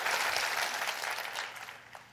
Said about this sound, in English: Come on, clap your hands and rejoice in that.